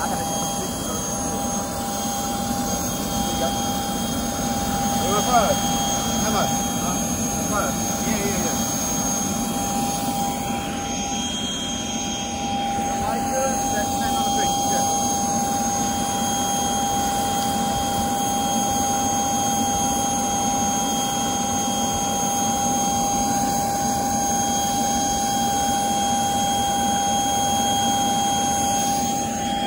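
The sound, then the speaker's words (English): A steady engine roar fills the cabin of Eddie's private jet flying to Newcastle, a deep constant rumble with a faint high whine running through it, unchanging for the whole stretch, with no voices. “First time on a jet”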